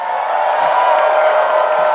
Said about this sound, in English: Church, can you give Jesus some praise? Shout unto God for souls.